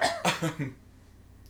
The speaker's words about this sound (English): No, I was just coughing. No, what? I just coughed a second ago.